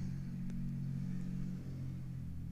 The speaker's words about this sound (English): If one more fucking car goes by that.